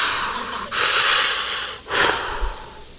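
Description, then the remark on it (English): A voice imitates a sleep apnea breathing machine with two long, hissy breaths, a raspy inhale and then an exhale, fairly loud, with a short gap between them. “I have sleep apnea. I have a machine like Darth Vader.”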